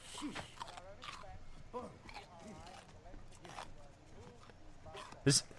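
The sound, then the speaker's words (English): Loud, scattered crunching bites from the character Michelangelo in a show being watched come through in irregular bursts under ongoing talk, ending with one especially sharp, heavy crunch. “I thought that was you crunching for a second.”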